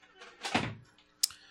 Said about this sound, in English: Well, then. We're shut in. Locked the door.